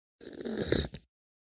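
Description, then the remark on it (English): A single loud slurp of Mocha Java coffee being tasted, a breathy, gurgling sucking sound lasting under a second that swells and then cuts off with a short final sip. No one speaks. “Going ahead and slurping it.”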